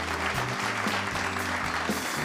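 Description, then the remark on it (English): Two people clapping their hands in a quick, steady patter that fills the whole stretch at an even loudness, with a low sustained tone running underneath. “So we can only really get half the claps from the two of us.”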